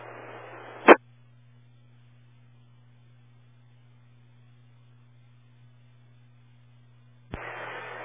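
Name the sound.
radio static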